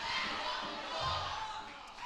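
A large crowd erupts in a sustained roar of shouting and cheering with clapping mixed in, loud and continuous throughout; an audience giving a praise for three seconds at a speaker's call.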